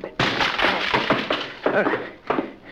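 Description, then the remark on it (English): A locked wooden library door is battered in with a few loud, heavy crashes at uneven intervals, each blow followed by cracking and splintering wood. “Excuse me while I try to ruin a library door.”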